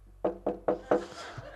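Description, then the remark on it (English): Four firm, loud knocks on a door in a quick, steady rhythm, followed by a faint, noisy tail. “I'm like, I'm not talking to whoever's at that door because I may punch him in the face because they're probably the one that just set up my chair.”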